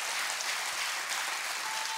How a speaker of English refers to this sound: Come on, clap your hands. This is for you. This is for you today.